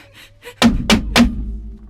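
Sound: knocking on a door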